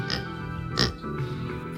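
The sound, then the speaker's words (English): A person imitates a newly adopted pet pig with a couple of nasal, grunting oinks, one near the start and a louder one in the middle, with no other sounds around. “yes, this is my pet pig that I have just adopted.”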